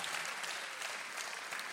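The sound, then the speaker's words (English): An audience claps steadily, a dense wash of many hands with no voices over it, holding an even moderate loudness for under two seconds. “Clap if you understand what I'm talking about.”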